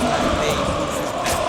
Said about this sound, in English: And listen to this fantastic standing room only crowd here at the Coca-Cola Coliseum.